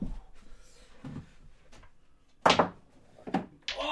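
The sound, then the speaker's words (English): A snooker ball is slammed hard into a bottom pocket, giving a loud knock followed by two more sharp clunks over quiet background, with no talking. “slams it down into the bottom pocket.”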